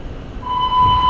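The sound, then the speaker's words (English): A daily emergency alarm test beep in a shopping mall sounds as a single steady, high electronic tone. It starts abruptly and holds loud and unbroken over a low background rumble, with no voices. “Yeah, if you hear that beep, I'm in the mall. And, you know, like, every fucking day they have to test this stupid shit.”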